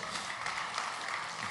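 An audience claps steadily throughout, a dense, even patter of many hands blending into a continuous crackling wash at moderate volume, with no voices standing out.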